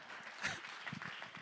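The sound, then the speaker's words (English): A brief patter of audience applause as the audience gives itself a hand at the speaker's prompt: many overlapping claps form a steady, fairly soft wash of noise with a few sharper hits standing out, and no one speaking over it. “You guys should not be clapping for that.”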